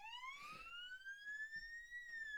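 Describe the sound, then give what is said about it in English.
A police siren wails with a steady, slowly rising tone that climbs and holds high, clear and fairly loud over faint background rumble, with no voices. “Police siren wall?”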